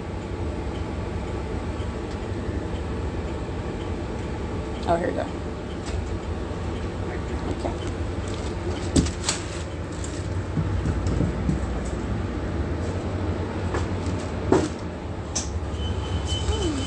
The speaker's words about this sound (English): That's all audible activity. It's ongoing noise while on the bus.